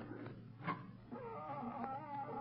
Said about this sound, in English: Lamont, that cat howling. It's frightening.